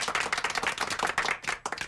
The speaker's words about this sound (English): Johnny, do you have a clapping machine that we can go, yay, and clap sometime during this segment?